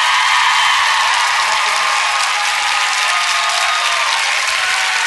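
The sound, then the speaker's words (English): Loud, sustained studio audience applause on the Ellen show, turned up in volume, a dense wash of many hands clapping at once that stays steady and bright for the whole five seconds with no pauses or voices breaking through. “That applause is also turned up.”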